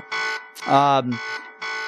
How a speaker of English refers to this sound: Yeah, the buzzer definitely sounded.